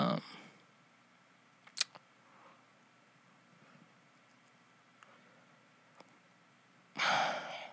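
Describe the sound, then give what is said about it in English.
Heavy breaths blow straight into a microphone, one loud gust at the start and another at the end, with near silence and a few faint clicks in between. “I'm like breathing in the mic so I can like have some like not dead air time or whatever.”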